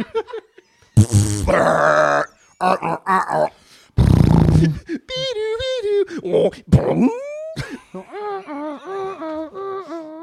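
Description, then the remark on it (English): Loud, blatty fart noises burst out in short blasts, mixed with groaning, bleating vocal sounds. Fairly loud, with brief pauses between the sputters. “You gotta end with the fart noise.”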